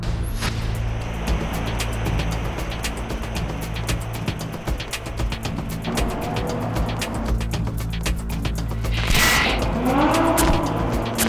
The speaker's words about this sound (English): It's a pleasure to see this car going around here in the echo under this freeway we're at. It just sounds like a racetrack.